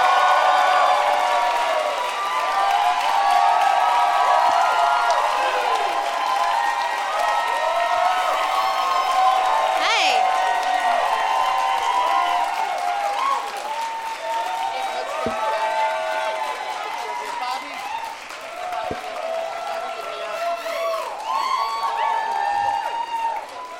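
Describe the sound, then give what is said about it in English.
An audience cheers and applauds to welcome four guests, Ron Bennington, Amy Miller, Gary Gulman and Bobby Moynihan, in a steady, loud roar of clapping, whoops and excited voices that holds for the whole stretch without dying down. “Please give a big warm welcome to Ron Bennington, Amy Miller, Gary Gulman, and Bobby Moynihan.”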